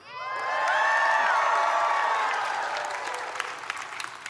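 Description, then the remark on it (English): A large crowd of Israelite army soldiers roars and cheers in a loud, sustained swell of many voices, with whoops over the din, then gradually fades into scattered shouts and claps. “And in the other corner, a teenage shepherd boy with some ping pong balls, with stones and a slingshot, and all the Israelite army now cheering for him.”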